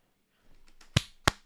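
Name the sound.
hand clapping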